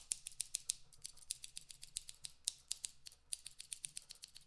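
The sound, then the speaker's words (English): Scissors snip rapidly and repeatedly, a steady run of crisp, sharp metallic clicks, fairly quiet, with no voices. “this is my buddy I brought along. His name is Steven the Scissors.”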